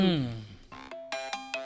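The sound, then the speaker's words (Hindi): A telephone ringtone chimes in short, repeating electronic tones, sounding several times in a steady rhythm just after a voice trails off at the start. “चाचा जी, आपका फोन।”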